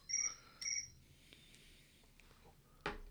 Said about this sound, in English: Anyway, sorry about that. I left my phone on. A friend of mine was trying to text me.